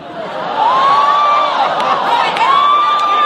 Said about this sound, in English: Oh, my God! No, boo. Yes, boo. You're correct in booing.